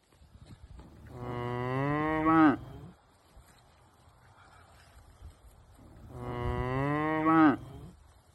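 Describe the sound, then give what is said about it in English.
Two long, loud cow moos from cows in a yard, each lasting about two seconds and rising to a strained end, separated by a quiet pause with faint outdoor background noise. “There's cows in the yard.”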